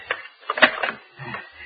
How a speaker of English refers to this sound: Safe in my room. No, wait, I must lock the door.